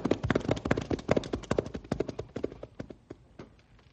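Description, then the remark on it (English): Horses' hooves clip-clop in a brisk, busy rhythm as the rested horses set off back to town, fairly loud at first, then thinning out and fading as the animals move away. No one speaks. “Well, let's step on it and get back to town now that the horses are rested.”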